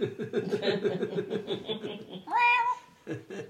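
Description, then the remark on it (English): A loud, drawn-out meow from a stray cat rises and holds near the end, following a couple of seconds of rapid, choppy chuckling-like vocal sounds, with a brief voiced burst closing it out. “That's what happens when you feed stray cats.”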